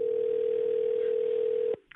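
A steady, unbroken telephone dial tone hums for nearly two seconds as radio hosts at New Country 103.1 place a call to a listener. It cuts off abruptly, followed by a brief faint click and rustle on the line.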